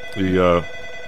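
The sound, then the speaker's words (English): A single short telephone ring, a bright buzzy tone lasting under half a second, fairly loud, with a faint steady background hum around it. “I got a phone call.”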